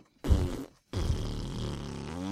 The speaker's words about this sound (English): Okay, that was clearly coming from the 3 of you. No! Then why did you make those wincing faces? Because the farts that you were making smell bad over here.